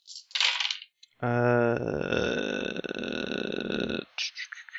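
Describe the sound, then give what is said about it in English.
A short burst of dice clattering and rattling across a hard table, followed by a long, low, droning sound that swells and holds for several seconds before a few final clicks; the roll comes up two tens. “Wait, that's too few dice. There we go, 2 tens.”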